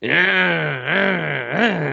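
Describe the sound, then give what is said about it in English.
A voice imitates a chainsaw with a steady buzzing drone that swoops upward twice in revving surges, loud and continuous for about two seconds, with no other talk. “the chainsaw would go...”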